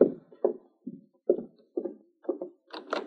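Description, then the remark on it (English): A series of about eight firm knocks on a door, coming in an uneven rhythm of single and paired raps with short pauses between, with no voices. “Is that the door?”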